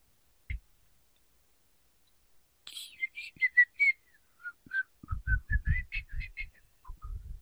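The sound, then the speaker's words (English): A person whistles a wandering, unsteady little tune, with short breathy notes, while soft clicks and tapping sounds patter underneath toward the end. “Not good at whistling.”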